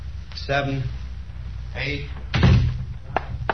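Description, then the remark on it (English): A door slams shut with one heavy, booming thud, followed by a couple of quick, sharp knocks. Brief voices are heard in the moments before the slam. “Shut the door.”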